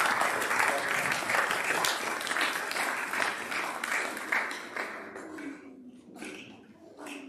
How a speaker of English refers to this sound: Thank you very much. Should we give them a little clap for their help?